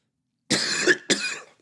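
Two harsh coughs in quick succession, the first longer and the second a short follow-up, with silence before and no talking.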